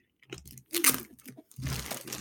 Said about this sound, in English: Tear into it like a lion. That absolutely visceral sound of a man tearing paper there.